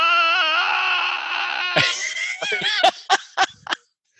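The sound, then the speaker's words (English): A voice imitates an actor's high, Pavarotti-like operatic scream, holding one loud, wavering note for nearly two seconds before it breaks into a string of short, sharp yelps and gasps. “His scream is just this one. It's like a Pavarotti, just like a.”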